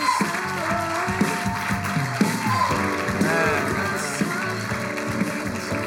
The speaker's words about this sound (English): Why don't we give God a round of applause? ¿Por qué no le damos a Dios un fuerte aplauso?